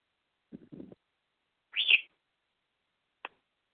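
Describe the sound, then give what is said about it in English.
A pet bird lets out a harsh, high screech between a few softer chattering sounds and a brief sharp chirp. “What, funny bird? Why are you screeching now?”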